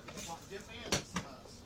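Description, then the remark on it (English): A small pin drops onto a chair, making two quick sharp taps in close succession, over a faint murmur of background voices. “Oh, I heard the pin go on the chair.”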